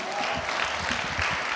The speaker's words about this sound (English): I just want to say thank you to … and to all of the Sprouts. Can we give them one more round of applause?